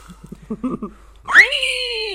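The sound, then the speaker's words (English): A person imitates a squealing dying pig: a few quick, low voiced grunts, then a loud, high-pitched shriek that rises sharply and holds a strained, wavering tone to the end. “That wasn't a bad pig. I know. The dying pig.”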